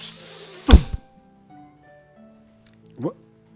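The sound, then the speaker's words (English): An arrow whips in and strikes a woman, piercing through her back and out her chest, with a sharp, heavy thunk, loud, followed by a low lingering hum and a fainter second swishing hit a couple of seconds later. “She drops dead as an arrow pierces through her back, out her chest.”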